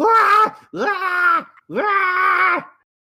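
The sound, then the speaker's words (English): A voice imitates a severely injured kobold, the one still alive after an attack, screaming wildly: three loud, strained wailing cries, each held for about a second with a sliding pitch, separated by short gaps. “The rest of you are awakened by this, if not by Dez breathing lightning, by the kobold who's still alive just screaming wildly.”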